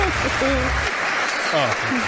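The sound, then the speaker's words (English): A crowd applauds steadily in dense, continuous clapping that fills the whole moment, with a few voices faintly audible beneath the noise. “They're applauding because he got stuttered.”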